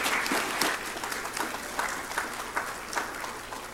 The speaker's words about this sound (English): And let's just give these guys some applause already.